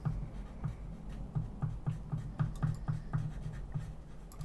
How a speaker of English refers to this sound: It's quite soothing, isn't it? That pen on paper noise.